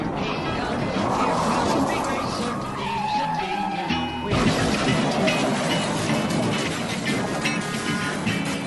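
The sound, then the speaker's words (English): Race cars skid with a rising tire squeal, then a sudden crash hits near the midpoint as rookie Suarez goes up and over Regan Smith in a big wreck. Loud engine roar and crowd-like noise continue afterward, with voices talking underneath. “That's the rookie Suarez up and over Regan Smith, the big one in the Toyota trial.”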